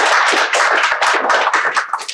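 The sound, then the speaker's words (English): A crowd applauds loudly and steadily, many hands clapping in a dense, continuous patter with no voices. “So let's have a round of applause for that.”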